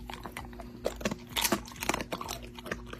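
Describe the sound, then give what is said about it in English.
A puppy chews a bedtime treat noisily, with irregular wet crunches and smacking bites repeating over a few seconds, faint low hum underneath and no talking. “What you thinking? Bedtime snack? I think he wants a bedtime snack.”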